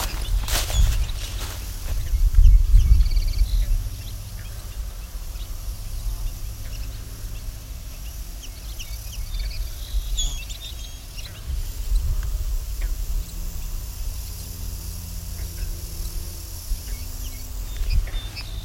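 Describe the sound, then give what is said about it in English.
A very large flock of at least 40 bobolinks calls with scattered high-pitched, short beeps, faint and irregular over a steady low rumble of wind or handling noise. “Hear them calling there. Kind of a high-pitched, short beep.”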